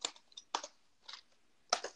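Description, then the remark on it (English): Quick bursts of keys clacking on a computer keyboard as someone double-checks a wrestling event's match card online, in short irregular clusters separated by brief pauses, with no voices. “when I am typing, go ahead and tell the people about yourself.”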